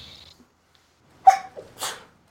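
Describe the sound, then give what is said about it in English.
A single sharp sneeze bursts out, a quick intake followed by an explosive, breathy release, with near silence around it. “Bless you. Bless you.”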